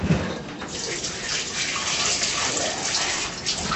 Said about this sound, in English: And then you wash your cucumber. Right now it's ready to wash it in filter water, okay, because you're eating it raw. Rinse it a couple of times until the water is all clear.